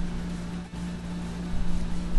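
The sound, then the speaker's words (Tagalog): A noisy air conditioner runs steadily, a loud, constant mechanical drone with a prominent low hum and a broad hiss over it, with no speech. “Maingay yung aircon ko.”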